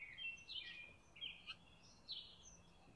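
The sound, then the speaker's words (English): Robins singing, bright warbling phrases and chirps rising and falling in quick bursts over a soft background hiss, with no voices. “Can you hear the robins? I hope so. The robin song has been so loud.”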